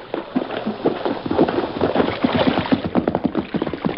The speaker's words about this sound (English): Hey, I hear a horse. Yes, it's Toto. Oh, great. Riding downstream so he won't leave tracks to our camp.